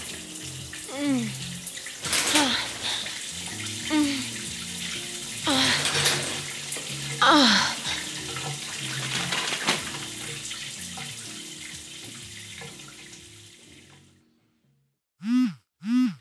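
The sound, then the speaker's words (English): Water from an enormous hotel shower runs in a steady hiss for about fourteen seconds with faint vocal sounds beneath it, then cuts off, followed by two brief electronic tones. “The shower was enormous. We fully disrobed and got in.”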